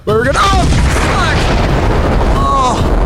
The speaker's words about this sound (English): Oh, God. That was hurt. A surprisingly large explosion for a table. Oh, I feel like that countdown didn't make it all the way to zero either.